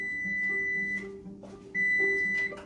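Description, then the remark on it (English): A kitchen timer set for a baking cheesecake sounds loud with two sustained, high-pitched electronic beeps separated by a short pause, over faint background noise and no talking. “And my timer's about to go off.”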